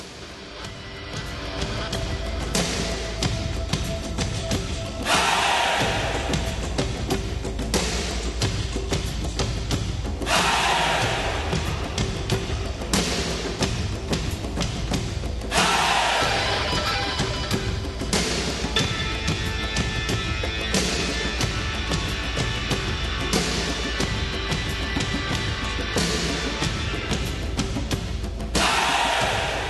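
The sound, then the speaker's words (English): A recording of a full-band rock song plays loudly and steadily, with pounding drums and big cymbal crashes landing every few seconds over sustained guitars and organ. No one talks over it. “This is ….”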